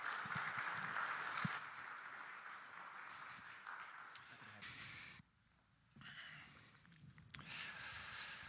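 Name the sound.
audience applause welcoming speaker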